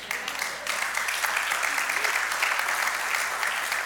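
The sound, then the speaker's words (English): An audience bursts into sustained applause, a dense wash of many hands clapping at a steady, fairly loud level throughout, with faint voices mixed into the crowd noise. The applause is given to the Lord. “Can we just stop right there and give the Lord a hand clap?”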